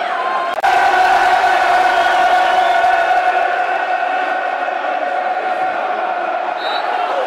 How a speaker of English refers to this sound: Bit of fire in the belly now, the crowd want it. As you can hear, a good tackle is all it needs often to get this crowd going.